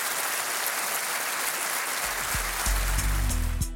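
An audience applauds in a dense, steady wash of clapping that holds for several seconds, while low sustained tones swell underneath during the second half.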